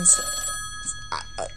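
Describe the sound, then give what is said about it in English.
A telephone rings with steady, sustained electronic tones, moderately loud, with a few short bright bursts overlapping the ring. “Oh, what the hell is that? Oh, it's my phone.”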